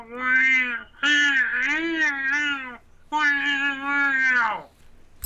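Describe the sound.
A person imitates a cat in an animal-sound game with two long, drawn-out meows, each wavering, whiny and loud, separated by a brief pause.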